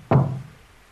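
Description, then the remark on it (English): One heavy knock on the door of room 114, with a dull low thud that rings out briefly before fading into quiet room tone. No voices. “Don't you knock on my door.”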